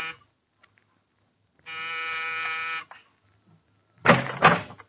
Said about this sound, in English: On the afternoon of your arrival in New York, you walk down the corridor of an apartment building in the East 70s. Pause. Press a buzzer.